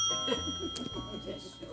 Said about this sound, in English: Whenever you hear that bell, that's calling you in. God's calling you in, even through a bell.